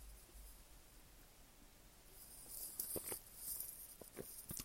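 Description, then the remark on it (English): Someone takes a quiet sip of a drink: a few soft wet clicks and slurps spread over a couple of seconds, with no talking. “Now, let's dive into Ecuador after I take a sip of my drink.”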